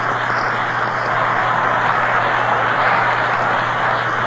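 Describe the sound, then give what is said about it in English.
A stadium crowd at a Yankees baseball game applauds the batter Selkirk in a steady, dense wash of clapping and cheering that holds an even level throughout, with a faint low hum underneath and no talking. “Listen to this round of applause for Selkirk.”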